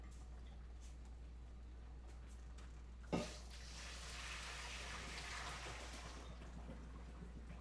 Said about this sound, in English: Okay, so the eggs are all out. I'm just gonna go ahead and dump this water. Okay.